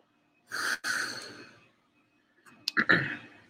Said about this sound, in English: So, yeah, I excuse me, folks. Sorry for clearing my throat in your guys' ear.